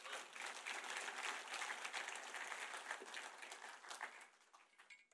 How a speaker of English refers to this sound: Okay, you're all clapping.